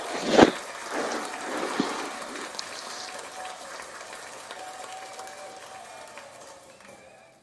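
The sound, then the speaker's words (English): A crowd at a church service claps for the Holy Ghost in a dense, steady patter that starts with a sharp burst and gradually thins out and fades over several seconds. “Applaud, applaud for the Holy Ghost.”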